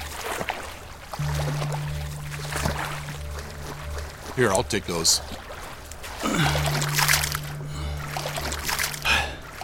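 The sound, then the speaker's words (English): Water sloshes and splashes in uneven bursts as someone wades through it holding a duffel bag and a coin master above the surface, over a steady low engine hum, with a person speaking briefly. “I do my best to hold the coin master and duffel bag up above the water's surface.”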